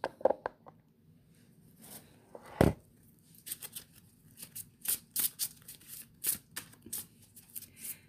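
A deck of cards is shuffled, a quick burst of riffling followed by a series of short crisp flicks and taps, with no voices.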